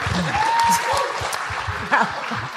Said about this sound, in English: A round of applause for Keisha's tassels.